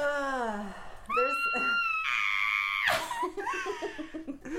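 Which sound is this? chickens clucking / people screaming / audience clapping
people screaming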